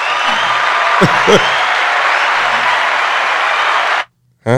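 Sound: clapping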